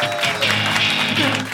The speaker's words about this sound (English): You know him from SNL, you know him from Girls. Everyone a big round of applause for Yorma Taconi. Woo!